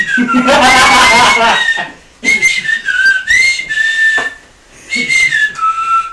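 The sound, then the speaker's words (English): A person whistles loudly, a shrill opening burst followed by several sliding, warbling tones with short pauses between phrases, and no talking alongside. “Damn, that's a true whistle.”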